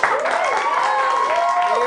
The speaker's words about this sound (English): If you could take that round of applause you just gave me and do it again to a factor of 10, not for me, but for the fact that recently I quit my job.